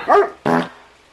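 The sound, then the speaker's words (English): A single loud dog bark, followed right after by a short, loud, buzzy horn honk, with no one talking. “Yeah, it was a bark and a horn.”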